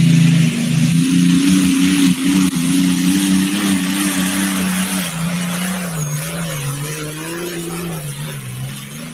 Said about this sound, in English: They saved the motor from the old Frequent Flyer, sold the chassis, went back east to New York. Blake built an all new chassis for this tractor, and it's working great.